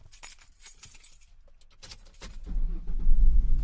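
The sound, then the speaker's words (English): Keys jangle and clink briefly, then a car engine turns over and a low rumble swells louder as the vehicle pulls away, with no voices. “Imagine yourself in the passenger seat of your car.”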